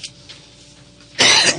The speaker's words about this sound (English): I'm sorry. I had to clear my throat there for this last 2 minutes of the show.